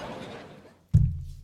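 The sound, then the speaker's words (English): Glasses of beer knock together once in a toast: a single sharp, fairly loud contact with a dull, low-heavy ring that fades over about half a second. No one speaks. “Raise glasses. Start talking about some other stuff. Cheers.”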